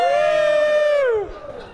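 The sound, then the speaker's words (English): A live audience cheers with one loud, high whoop standing out, held steady for about a second before it slides downward and trails off. “Cheer if you've said, come on my face.”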